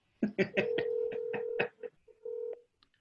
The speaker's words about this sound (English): So I'm punching these numbers in. I hope I get them right. I'm going to make a phone call just right now, live on the air, and hopefully he won't answer in a bad way. Can you hear that ringing?